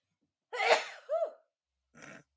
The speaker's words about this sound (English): I'm going to sneeze. Please hold. Oh.